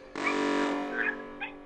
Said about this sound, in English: It's a barking dog. Is that Bug or Bug's enemy? No, that's just her enemies.